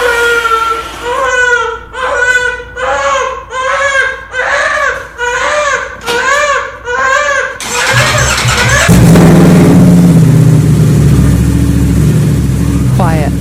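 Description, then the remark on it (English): A baby cries in repeated rhythmic wails, then a motorcycle engine starts up and runs loudly in a garage with the door open, a steady roaring rumble that fills the space and drowns out the crying. “And the motorcycle wasn't as loud as it is in the video.”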